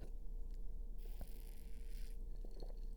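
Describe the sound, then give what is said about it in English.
Someone sips coffee given out at a store opening: a soft, airy slurp lasting about a second, followed by a few small clicks and a swallow over a low steady hum, with no one talking. “Let me take a sip, though.”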